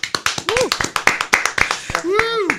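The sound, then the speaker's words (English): A small studio audience sitting in a room of a house claps in a loose, uneven patter of sharp slaps, lasting a few seconds, with a couple of voices whooping and cheering over the applause. “Round of applause, guys.”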